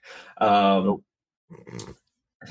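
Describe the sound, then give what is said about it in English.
A single loud, drawn-out bark from a female dog rings out, followed after a pause by brief snippets of people talking. “Oh, I just heard her bark.”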